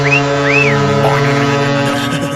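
Kurt's High Performance Car Horn blares loudly and continuously for over two seconds, a steady buzzy tone with a few brief swooping whistle-like sweeps riding on top. No one speaks.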